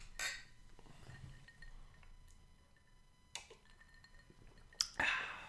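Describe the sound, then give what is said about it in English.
A few bright glassy clinks ring out at uneven intervals, like glasses touched together in a toast, quiet over a soft low background hum. “So here's hoping that everybody gets it back as soon as possible. Yeah. Cheers.”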